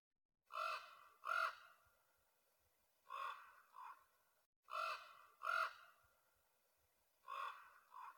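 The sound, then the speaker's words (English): A raven calls repeatedly, letting out loud, harsh, raspy croaks in pairs with short pauses between, about eight calls in all, with no talking. “It's not a crow. It's a raven.”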